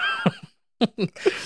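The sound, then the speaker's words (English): A horse whinnies in a few quick, shrill bursts separated by a brief silence, fairly loud, with no talking over it. “Fucking horse.”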